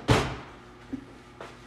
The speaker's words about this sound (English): Can you close the drawers when you open them?